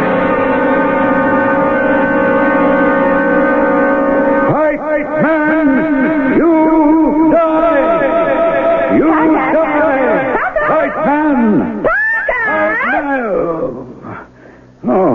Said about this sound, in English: Oh, just fussing around with the tape deck. Pretty near got it all set up now. That was the reverb you were hearing.